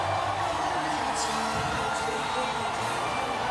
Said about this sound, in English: So you've got the parade noise on one side, you've got the music on the other. Here's street level now.